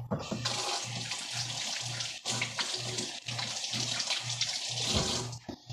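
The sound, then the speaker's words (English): Tap water runs steadily as someone washes their hands, a continuous splashing rush with a faint pulsing low hum beneath it and no talking. “I have to wash my hands, so if you hear water, that's why.”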